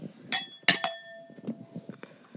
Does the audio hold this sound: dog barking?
no